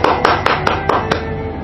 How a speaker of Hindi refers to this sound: इनके लिए जोरदार तालियां। रुकिए, सबसे पहले मैं बजाऊंगा।